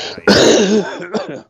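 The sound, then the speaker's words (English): A harsh, loud cough bursts out and drags into a strained, gagging rasp, followed by a shorter throaty hack before it stops. No talking is heard. “Better than your coughing and gagging ass, I see.”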